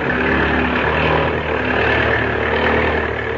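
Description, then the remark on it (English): A propeller airplane engine roars loudly and steadily as the throttle is opened wide, a dense, rumbling drone with humming tonal layers that holds at full strength throughout, with no voices. “Now, open the throttle up wide.”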